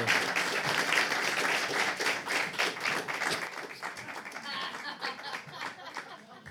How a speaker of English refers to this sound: So thank you once again, and another round of applause for the Brothers Moore.